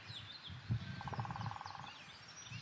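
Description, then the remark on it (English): A great spotted woodpecker drums a single rapid, even burst lasting about a second in the Silent Valley National Nature Reserve, while other birds chirp faintly and a low rumble continues underneath. “Great spotted woodpecker.”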